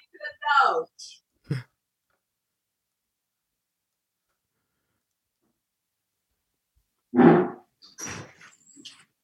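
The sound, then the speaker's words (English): A dog named Basil gives a couple of short, sharp barks, then falls quiet for several seconds before a louder bark and a few softer follow-up sounds. “Oh, who is that? That is a lovely dog.”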